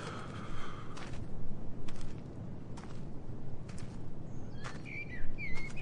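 A blackbird calls with a few short, bright whistled notes toward the end, fairly clear over a rustling background in an outdoor exercise yard with a mesh roof, with occasional soft steps or knocks.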